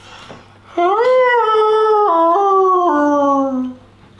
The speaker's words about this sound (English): It's not long at all until it's answered by a fainter howl. As if in answer. What? The wolves are howling still.